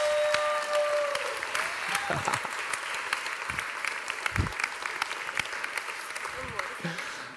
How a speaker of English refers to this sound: Would you guys come up, be embarrassed, give them a round of applause, please?